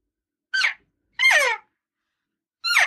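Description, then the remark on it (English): Three elk cow calls imitated by a hunter, short, a bit fast, high-pitched mews that slide downward in pitch, each under half a second, with nothing else audible between them. The middle call is the longest. “Are your cow calls, the way you just did those, they're a bit fast.”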